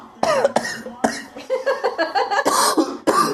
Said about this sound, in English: The coughing afterwards makes it...